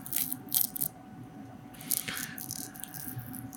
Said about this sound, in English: Oh, it feels too crunchy to be like a KFC. No, that's juiciness also.